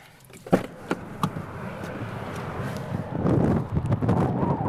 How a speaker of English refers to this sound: Super windy.